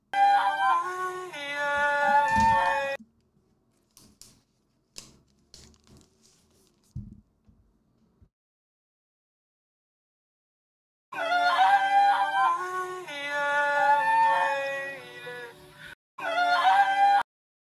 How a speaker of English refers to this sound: You have to admit, that's pretty funny with the song and the way she's crying. Let's listen to it just one more time. That is so funny.